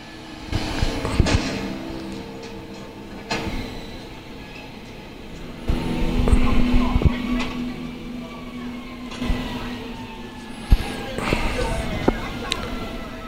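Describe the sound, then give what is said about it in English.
A garbage truck collects recycling from trash cans, its engine rumbling and hydraulics whining, punctuated by several sharp clanks and thumps as trash is loaded, with muffled voices mixed in. “if you can get inside this trash collecting truck”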